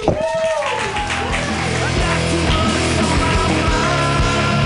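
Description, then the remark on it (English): A comedy club crowd claps steadily and loudly throughout to welcome a comedian from Australia, with a rising whoop and some cheering voices at the start over the dense wash of applause. “Clap your hands wildly”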